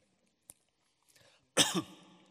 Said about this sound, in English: I've done a lateral flow test. You're all right. I don't have COVID. I just have a cough.